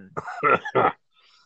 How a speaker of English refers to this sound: Oh, man. That's gotta be super, super entertaining for people to listen to me cough as I take a drag.